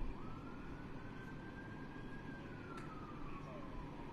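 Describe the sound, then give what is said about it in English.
A faint emergency vehicle siren wails in a slow rising and falling sweep in the background, barely above a steady background rumble, with no other sounds standing out. “I hear more sirens in the background.”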